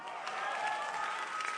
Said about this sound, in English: If you are clapping, clap better.